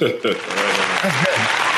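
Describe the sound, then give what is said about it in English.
Brief audience applause, a steady wash of clapping that lasts under two seconds, with voices talking over it throughout. “Film kind of gypped on the applause here.”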